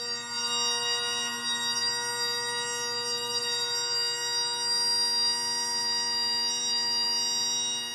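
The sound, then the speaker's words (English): A bagpipe drone sounds steadily for the whole stretch during a practice session, a dense buzzing reedy chord at even loudness, its tone wavering slightly as the player adjusts the drone's tuning to remove small beats. No one speaks. “So there's me adjusting the drone slightly again.”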